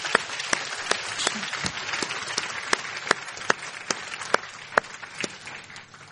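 A church audience applauds the children and their junior worship teachers as the children are dismissed: a dense wash of many hands clapping, with a few sharp, louder individual claps popping out at fairly regular intervals before the sound eases slightly at the end.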